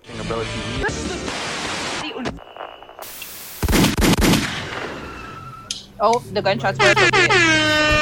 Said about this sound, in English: Oh, the gunshots were appropriate. Sorry. No, they were mad appropriate.